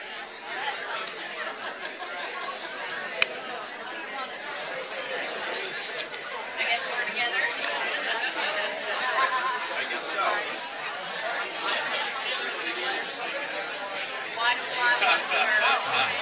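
A steady hubbub of a conference session audience chatting in small groups for a timed three-minute discussion about why they want to serve, overlapping voices forming a continuous babble with no single speaker standing out, holding an even level throughout.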